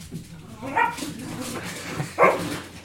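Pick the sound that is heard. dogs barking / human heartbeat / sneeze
dogs barking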